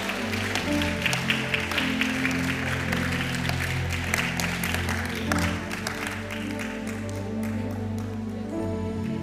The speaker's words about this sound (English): Oh, it's a precious thing when the Lord puts you in the midst of your new eternal spiritual family. Clap your hands, somebody, and say amen.